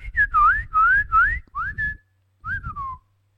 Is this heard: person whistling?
yes